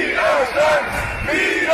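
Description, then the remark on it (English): A loud, steady roar of a peaceful street protest crowd walking through the streets of Berlin, with many overlapping raised voices and a few sustained shouts rising and falling above the din throughout. “How about the protest cut 12 in Berlin? Looks like a peaceful crowd there just walking in the streets.”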